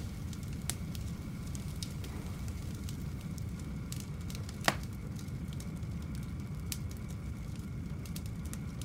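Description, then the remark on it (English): A campfire blazes up after more wood is placed on the dying fire, a steady low roar of flames broken by scattered sharp crackles and pops, one loud snap standing out midway; no voices. “I walk back to my dying fire and almost automatically, almost out of duty, place more wood on it. In 10 seconds, it's ablaze.”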